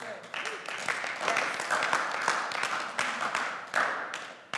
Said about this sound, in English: Now, that is an applaud worth applauding, but it hurts to live it out.